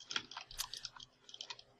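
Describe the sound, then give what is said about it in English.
Faint, rapid keyboard typing: a quick, irregular run of soft clicking keystrokes on a mechanical keyboard with brown switches, heard alone at low volume with no one talking. “You and your mechanical keyboards with your brown keys.”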